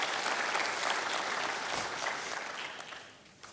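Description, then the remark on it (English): A church audience claps for the women who serve the church, in sustained, dense applause that is loud and steady at first, then gradually thins and fades toward the end, with no talking over it. “And I think it's been a while since we've clapped for them.”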